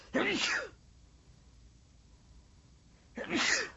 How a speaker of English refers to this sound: Excuse me. Wow, just thinking of that made me sneeze.